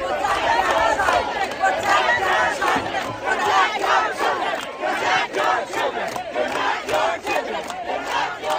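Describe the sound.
A large, diverse crowd of many people from around the world fills the scene with loud, continuous overlapping voices and shouts, a dense steady roar of many people talking and calling out at once.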